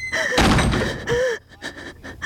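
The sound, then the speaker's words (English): A heavy door creaks and slams shut with a loud thud, followed by a second shorter creak and bump before the sound dies away. “Though natural light was abundant via a hole in the tree's trunk far, far above her head, there was no clear route of egress save for that ominously loud door.”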